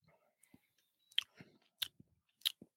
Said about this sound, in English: Oh, speaking of which, I did find a bottle opener. And so Round Barn Root Beer, having a sip. And?